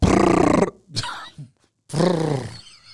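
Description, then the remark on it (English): A person imitates a lion's roar with two loud, gravelly vocal bursts, each under a second long, separated by brief breathy grunts and a moment of silence. “Were you the Cowardly Lion?”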